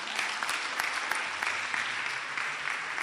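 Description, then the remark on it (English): A crowd applauds steadily for all teachers, many hands clapping at once in a dense, sustained wash of sound that holds at an even level for the full three seconds. “Clap for all teachers.”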